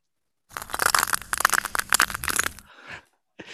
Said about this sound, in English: So you should imagine like the water becoming ice and... Right. I'm imagining that. I'm also imagining my childhood in the cold winters of Canada, just when I hear that.